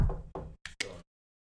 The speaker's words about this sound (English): Fingers crossed. Knock on wood.